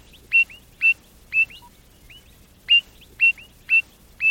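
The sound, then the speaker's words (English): A Mozart's frog calling: about seven short, high, whistle-like notes repeated in a steady rhythm, with one longer pause partway through. No one speaks. “The person that described that frog took some call recordings, and when he plotted them out on an audiogram, they bore a remarkable resemblance to the musical notes in one of Mozart's scores.”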